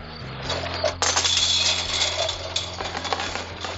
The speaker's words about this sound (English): Bang those chains. Woo!